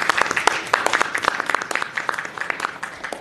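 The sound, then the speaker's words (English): A round of applause from a group at an SF Environment commission meeting, welcoming new employees: many overlapping hand claps forming a steady, moderately loud crackling wash that holds evenly for about three seconds with no talking. “And so we can give them a round of applause and thank them.”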